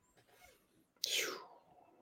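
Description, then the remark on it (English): A single sneeze: a faint breathy intake, then a sudden loud hissing burst that fades over about half a second. No one speaks. “God bless you.”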